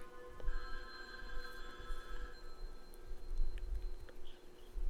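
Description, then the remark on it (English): A telephone rings with a call from the Zodiac, a steady, high electronic tone for the first couple of seconds, then thins out and lingers faintly over a low, rumbling background, with a few soft clicks. “Push to the phone. Perfect ringing.”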